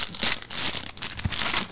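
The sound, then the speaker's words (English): Wrapping paper being torn off a gift, which turns out to be a SpongeBob glass set: a busy burst of loud, crisp ripping and crinkling, with several quick tears blending into continuous rustle over a couple of seconds, with no voices. “Wrapping noises and effects.”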